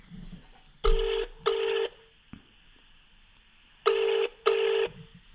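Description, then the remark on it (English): A phone ringing tone from an unarranged call to Dave Elliott sounds twice in a double-pulse pattern, each pair of short buzzing rings separated by a quiet pause, heard clearly over a faint background hum. “We haven't arranged this phone call, so hopefully he picks up. Let's find out what's really going on. Oh, it's ringing.”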